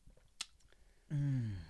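Faint wet, squishy sipping of a slushy drink with a brief sharp slurp, followed by a louder, drawn-out voiced 'ahh' of satisfaction.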